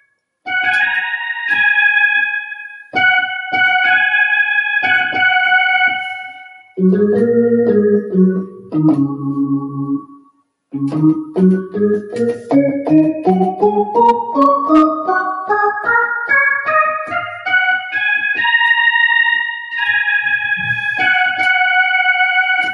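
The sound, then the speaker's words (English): A piano melody played on the black keys, with one white key hit by mistake, and no talking: held ringing chords, a lower rocking figure, then a long steady run of notes climbing in pitch before settling into sustained tones, washed in echo. “So this is the one that you were talking about that uses only black keys.”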